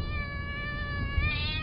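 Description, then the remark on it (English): A black cat with bright green eyes hisses on a porch with a tense, drawn-out yowling tone, one continuous sound lasting under two seconds with no one talking. “It stopped and hissed just long enough for them to see it was a cat, black as midnight, with bright green eyes.”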